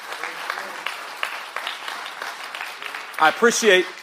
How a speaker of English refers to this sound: I appreciate the applause. That's not what I was going for. I'm just telling you it's that important.